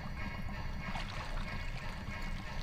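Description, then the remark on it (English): A hand pushes slowly into water thickened with powder, forming a seal around the skin, to reach in and grab a timer, making a soft, continuous sloshing and squelching with a low watery rumble and no voices. “When you cover the surface, slowly push your hand into it. It'll form a seal around your skin.”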